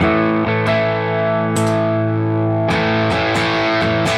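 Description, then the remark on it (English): A distorted electric guitar played through a Sweet 9 fuzz pedal, set a little above 9 o'clock, plays sustained, buzzy chords with a thick fuzz tone, struck anew several times with sharp attacks, steady and loud throughout with no talking. “This pedal reminds me a lot of the Broadcast when I heard the first demos and stuff.”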